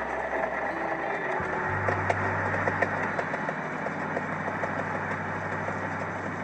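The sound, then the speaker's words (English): A car engine turns over and catches, then settles into a steady, low idle that rumbles on evenly, with no voices. “Well, I've got a car.”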